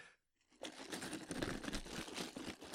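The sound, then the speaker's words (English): After a brief silence, jagged chunks of ice in almost frozen water rattle loudly inside a shaken water bottle, a dense, crunchy clatter pulsing in quick rhythmic bursts for a couple of seconds with no talking. “That's what it sounds like when I shake her water bottle. There are chunks of jagged ice in there.”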